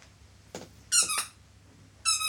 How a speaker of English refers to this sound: Ooh, how about squeaky dog? Squeaky dog?